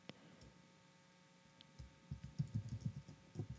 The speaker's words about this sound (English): Sorry, I'm typing really slow, but I'm sure you can hear and judge my keystrokes. It's because my hands are cold.